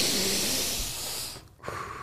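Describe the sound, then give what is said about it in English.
A long, forceful breath blown out after a shot of tequila, a rough airy rush lasting over a second, then a brief pause and the start of another breathy exhale. “Don't blow out, dude.”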